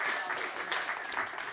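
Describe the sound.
An audience claps their hands together to give their love to a woman present, in a dense, steady burst of applause that keeps an even loudness throughout, with faint voices mixed into the clapping.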